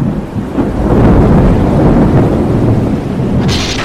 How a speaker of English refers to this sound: He was so tired, he didn't hear the wind blow stronger and stronger. He didn't feel the waves rock and toss and throw the ship about. He didn't hear the sailors' frightened cries. He did not know there was a storm, a very scary storm.